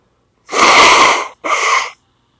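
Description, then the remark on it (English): Someone blows their nose in two loud, hissing bursts: a long forceful blow followed by a shorter one after a brief pause, with no talking. “I'll just blow my nose.”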